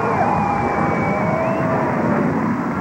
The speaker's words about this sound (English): Now Air Force Number One taxiing in. Doors of the Big Bird swing open.